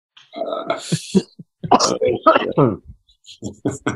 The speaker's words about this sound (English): Kyle, you okay, man? I've been coughing for 2 weeks.